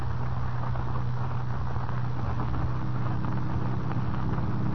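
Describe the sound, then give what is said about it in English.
A car engine drones steadily as the car ascends a dark, winding road up Music Mountain in the evening, a continuous low hum with a rushing wash of road and wind noise, holding an even level throughout with no voices. “Late the following evening, Kent and Lois Lane in another car ascend the dark and winding road up Music Mountain.”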